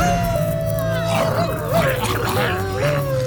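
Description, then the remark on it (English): Several giant wolves (wargs), each the size of a small pickup truck, snarl and growl over a steady, drawn-out howl-like tone, the noise loud and continuous for a few seconds with rough, rumbling undertones and no one speaking. “In seconds, a wolf the size of a small pickup truck leaps out from behind a boulder and blocks their path.”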